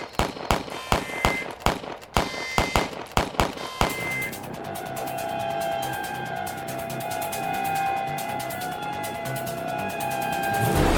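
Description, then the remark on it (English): A rapid, uneven volley of roughly a dozen sharp, loud gunshots from a woman shooting her gun cracks out over a few seconds, then gives way to a steady, sustained wash of noise with faint tones. “I barely got set up when she started shooting that gun of hers.”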